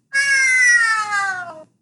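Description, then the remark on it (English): A person imitates a cat's meow in one long, drawn-out, slightly falling cry lasting over a second, loud, with no other sounds around it. “No, I'll just meow because I want to go to bed.”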